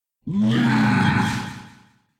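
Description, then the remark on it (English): A person voices a single loud, gravelly dragon roar, starting abruptly, holding for nearly two seconds with a rough growling texture, then trailing off. No other talking. “this dragon, after slashing at Leon a few times, is going to look up in the sky and roar”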